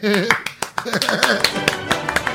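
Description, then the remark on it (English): Sharp hand claps from a small group burst out in a quick, slightly uneven rhythm, about a dozen in two seconds, with voices cheering and talking over them. “Or just applause.”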